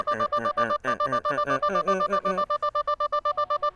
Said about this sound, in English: The sound of this alarm is getting louder and louder.